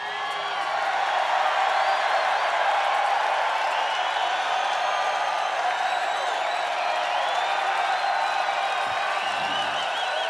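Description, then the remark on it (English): A large concert crowd in Seattle roars with sustained cheering, whistles and applause, a dense, steady wall of noise holding loud for about ten seconds with individual whoops rising above it. “If you call this a Seattle crowd, this has to be one of the better Seattle crowds.”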